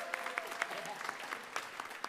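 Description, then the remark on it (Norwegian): An audience applauds with a dense, steady patter of many hands clapping, sharp individual claps popping out over the rolling clatter for a couple of seconds. “Og det er så bra, jeg er skikkelig klapp for dem.”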